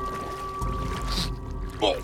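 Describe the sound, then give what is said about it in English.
A boat churns through canal water near the Lockport power plant with a steady low rumble and constant hum, broken by a couple of brief splashing swishes, as workers use it to retrieve a body floating in the canal. “Scully and the other workers used a boat to retrieve the corpse.”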